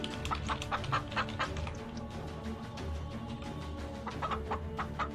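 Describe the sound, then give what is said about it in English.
A flock of chickens clucking steadily, with short overlapping clucks and squawks from several birds, constant throughout, with no one talking. “I think I'm going to try to catch a chicken and sacrifice it.”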